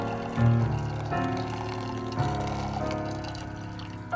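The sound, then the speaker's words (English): A steady stream of water pours into a Stanley pour-over coffee maker set while coffee is being made, its pitch rising gradually as it fills, fairly loud with no talking, resembling a continuous trickling splash. “And then the actual factual way of doing it actually sounds like somebody peeing, so that's cool.”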